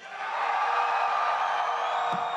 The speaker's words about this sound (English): I'm going to say the name, and you scream for the one you want. All right, who wants Droopy?